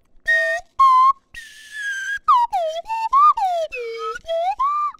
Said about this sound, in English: Okay, the slide whistle it's a miniature trumpet really. I mean, we could do different notes.